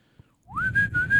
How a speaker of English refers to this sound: And that's supposed to be the sound of whistling?